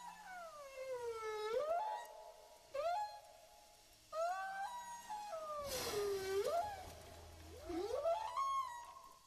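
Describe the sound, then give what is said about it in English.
Whale song: a series of about five long, sweeping moans and wails that rise and fall in pitch, rich and resonant, with no voices. “It's what the whales are talking about.”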